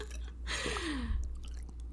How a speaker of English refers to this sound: Are you going to gulp it? You did.